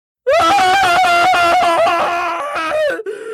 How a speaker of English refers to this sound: It eats! He cried out, his voice a throat-scraping scream.